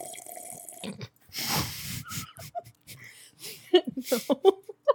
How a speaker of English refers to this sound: Just a little ASMR, just like. Oh, we always do that. Can you hear that? Yeah, I can hear that. Slurp it. Huh? Slurp it, though. You have to swallow it slow.